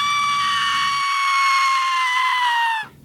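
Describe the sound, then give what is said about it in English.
A single sustained, high-pitched scream from an adult woman, loud, holding steady for nearly three seconds before cutting off abruptly, with no talking over it. “And scream of a woman.”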